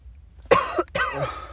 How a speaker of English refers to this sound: Well, she's coughing.